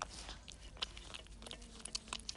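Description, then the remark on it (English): Quiet chewing and chomping as a cat eats its food, with irregular wet clicks and small crunches in an uneven rhythm over a low background hum. “Are you chomping on those delicious morsels?”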